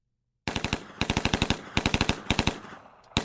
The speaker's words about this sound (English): Would you roll out machine gun number one, please?